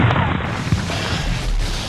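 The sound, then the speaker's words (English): A heavy gunshot from an elephant gun booms out with a brief sharp crack, then a dense, noisy rumble rolls on and gradually fades in the low end. “Dear Lord, woman, that elephant gun is bigger than you.”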